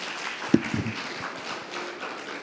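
Scattered audience applause at the Fireside event, welcoming a guest speaker, makes a steady, hissy crackle of many hands throughout, with a couple of duller thumps near the start. It stays fairly soft, and no one speaks.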